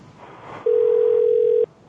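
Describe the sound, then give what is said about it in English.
A steady, unbroken electronic tone hums on a phone line for about a second, loud and constant, then cuts off abruptly over faint line noise. “The phone is ringing like there's a dial tone or something.”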